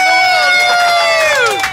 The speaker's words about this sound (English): As you heard there, we ended up with the whole of Australia yelling Chicken Fest.